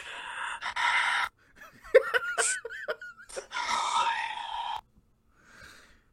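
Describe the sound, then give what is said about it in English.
A voice imitates strange, heavy breathing: a few loud, breathy gasps and rasping inhales and exhales with a wavering vocal whine between them, then a faint breath trailing off. “That's why they hear a weird breathing noise in the middle of the night.”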